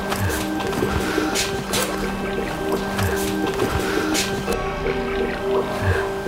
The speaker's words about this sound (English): Do you hear the water?